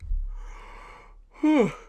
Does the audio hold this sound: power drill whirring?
no